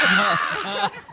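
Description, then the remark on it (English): A person lets out a harsh, raspy screech, imitating a large prehistoric bird. The loud, strained cry holds for under a second, then cuts off abruptly. “Truly a terror bird.”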